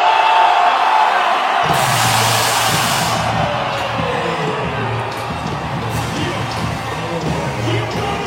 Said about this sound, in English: you can hear it in the crowd, the students. They were very excited to see Bronny out there.